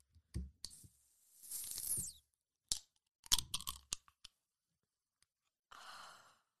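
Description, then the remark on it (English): A drink can is cracked open: a few sharp clicks, then a bright fizzing hiss lasting about half a second, followed by scattered metallic taps and a soft breathy rush at the end. “Is anyone like a crazy psycho like me and loves the sound of a can opening?”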